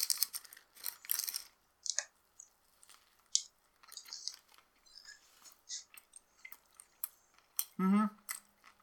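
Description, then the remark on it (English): Wet chewing and crunching from someone eating a sandwich, a steady run of irregular bites and smacks, ending with a short voiced hum. “We're gonna include the, like, chewing sounds, right?”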